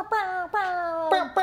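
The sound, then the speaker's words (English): A person vocally imitates an air horn with four loud, buzzy blasts: two long held honks followed by two shorter ones, each sagging slightly in pitch toward its end. “We'll get the acapella air horn going.”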